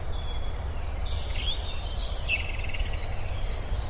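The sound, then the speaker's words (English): Birds sing outdoors, bright chirping trills rising and falling over a steady low rumble of ambient noise, with a few overlapping calls and no voices. “I don't know if you can pick up any of these beautiful bird sounds everywhere.”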